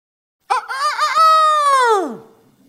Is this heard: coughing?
no